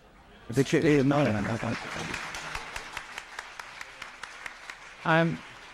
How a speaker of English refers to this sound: I'm delighted with the applause from the architect.